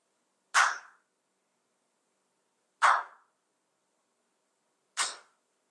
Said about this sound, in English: How many times I clapped? 他鼓了几声 ？Three times. 三声。 Why it became three? 为什么是三 ？Because between the two claps, there was silence.